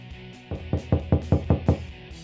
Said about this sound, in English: Knock, knock.